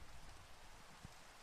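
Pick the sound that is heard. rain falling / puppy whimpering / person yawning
rain falling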